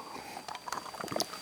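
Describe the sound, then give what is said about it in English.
A preacher at a church pulpit sips water: quiet slurping and swallowing with small wet clicks and a few brief gulps, alone with no talking, over a soft steady background hum. “After I have a little bit of water here.”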